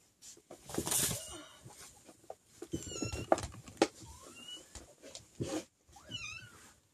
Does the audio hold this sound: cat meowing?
yes